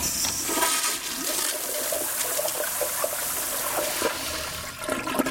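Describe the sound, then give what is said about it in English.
A toilet flushes with a steady, rushing gush of water that churns loudly throughout, broad and hissy, with gurgling swirls and no voices present. “Americans flush a quarter of a billion pounds of drugs and contaminated packaging down the drain every year.”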